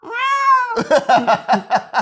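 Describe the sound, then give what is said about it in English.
A cat lets out one long, drawn-out meow, then a rapid run of about six short, clipped meows in a steady rhythm, loud with no talking. “That's not the kind of pussy I was expecting.”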